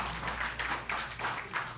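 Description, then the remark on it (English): An audience claps, a dense, continuous patter of many hands that swells in a few uneven waves and holds at a fairly loud level throughout, with no clear voices over it. “Yeah, but when we clap, let's make sure we got compassion”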